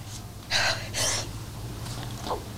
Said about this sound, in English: Sorry, I had a little sneeze there. Allergies, I'm back in Texas.